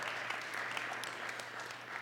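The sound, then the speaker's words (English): A crowd applauding steadily for couples married 50 years, dense clapping at moderate volume, continuous for a couple of seconds with no voices over it. “Yeah, seriously, you can applaud for those folks.”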